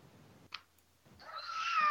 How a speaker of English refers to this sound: It's the cat! Huh.